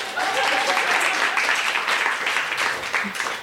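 An audience applauds steadily, a dense wash of many hands clapping at a fairly loud, even level with no pauses, sustained throughout.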